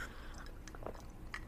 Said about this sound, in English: I'm just taking a fat sip of my ice cold water from my Life Being High the podcast mug